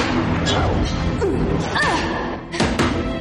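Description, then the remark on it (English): Fists thump a punching bag in a few dull, heavy blows at an irregular pace, against a busy background with faint voices; the character Sarah beats the bag at Castle in the TV show Chuck. “And then we quickly cut to Castle, where, just like in Chuck versus the Cougars, Sarah is working out all of her anger and frustration, beating the crap out of a punching bag.”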